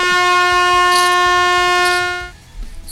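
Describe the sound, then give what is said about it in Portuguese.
A loud, steady air horn buzzer blares for about two seconds to cut off a speaker's comment, a flat harsh tone rich in harmonics, then cuts off abruptly, leaving faint background noise. “Buzina nele, Pix, buzina.”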